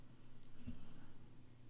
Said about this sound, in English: My cat just meowed. She agreed.